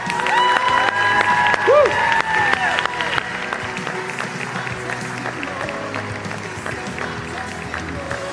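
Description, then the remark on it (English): A crowd claps and cheers loudly as a woman comes up out of the water after her baptism, with whoops and shouts rising over dense applause that holds steady and then eases slightly but keeps going throughout. “Anytime the world would connect and try to condemn and tell us who we are, in this moment, when she comes out of the water, we're going to cheer and affirm who God says she is.”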